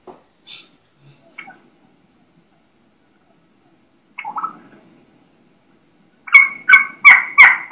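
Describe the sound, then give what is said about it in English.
A hen turkey, already down on the ground, gives a few thin, high whistled kee-kee notes, the sounds of a young hen, then after a pause breaks into a loud run of about five rhythmic raspy yelps, a kee-kee run. “Typically considered a key-key run, where they do a key-key, the young hen sounds, and then run right into a yelp.”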